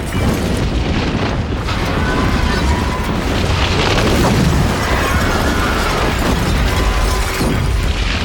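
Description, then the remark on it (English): Sustained, loud destruction sound effects from a film scene as Kal-El zooms away from his doomed home planet: a heavy roaring rumble with booming crashes and crystalline shattering, with screams woven through the din. No music, and nobody speaks. “More destruction as Kal-El zooms away. No music. Just screaming and crystals, screaming and crystals.”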